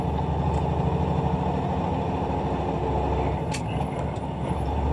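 A heavy truck engine in a played video rumbles loudly and steadily as the driver shifts from first up to high gear without using the clutch, its throbbing drone briefly changing as gears shift, with a short sharp hiss of air partway through. No one speaks.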